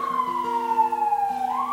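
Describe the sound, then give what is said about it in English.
A police car siren, heard in a library in Baltimore, Maryland, wails on its own, a steady high tone sliding slowly downward before sweeping back up at the end, with a low engine-like hum underneath and no talking. “Uh-oh, it's the cops.”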